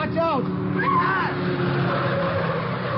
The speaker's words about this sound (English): Watch out! They jump back just in time. The car whips by and heads for me. I grab a push cart and shove it toward the car as I dive to one side. The driver swerves and goes up on the sidewalk.